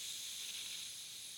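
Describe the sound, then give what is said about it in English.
A deep breath drawn in through the nose during a belly-breathing exercise, right palm on the chest and left palm on the belly, heard as a soft, steady airy hiss lasting about a second and a half, even in loudness with no talking. “But just do, as I said, right palm at the center of your chest, left palm over your belly, and then breathe in deeply. In through your nose.”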